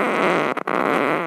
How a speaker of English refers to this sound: This is unedited bubbly shorts and farts. Here we go.